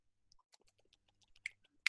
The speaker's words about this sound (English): You're chewing on a thing like a mouse. Have you been eating?